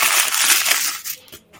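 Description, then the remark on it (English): Dry leaves crackle and crunch underfoot in a dense burst of bright, rustling crackles, fading into a few scattered crunches before stopping. No voices. “Then he heard another crackling of the leaves.”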